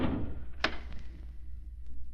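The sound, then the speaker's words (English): A stuck door gives way with one sharp thud, then a faint creak, over a steady low rumble with no voices. “Door stuck for a second.”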